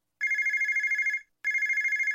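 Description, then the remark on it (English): A telephone rings twice, loud: a bright, rapidly trilling electronic bell lasting about a second each time, separated by a brief pause, with no voices present. “If your phone's not ringing, chances are it's a problem with your marketing.”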